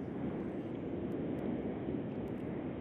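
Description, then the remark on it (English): A steady, continuous roar of a car on the road, a dense low rumble with a hissy top that stays at an even loudness throughout, with no one speaking. “No, I can hear car. I can't hear Sarah.”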